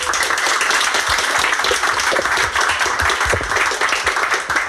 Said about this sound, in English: Round of applause for our guests then.